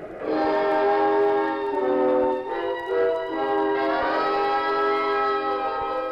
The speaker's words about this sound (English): Well, the train's going too fast.